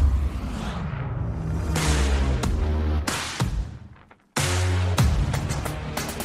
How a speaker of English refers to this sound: this pre-production truck you see behind me. Let's go see what it'll do. Gonna do the same run.